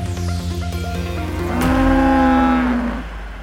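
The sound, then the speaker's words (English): A cow lets out a long, loud bellowing moo that swells midway and trails off, preceded by lower droning lowing sounds, with no talking. “You know, abs being splashed with water, and the cow whale kind of underneath me, sort of moo bellowing and spuming with delight.”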